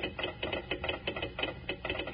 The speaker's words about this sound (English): It said, Kellogg's Rice Krispies, snap, crackle, pop. Now, how about telling us why Kellogg's Rice Krispies sound off like that when you pour milk or cream over them?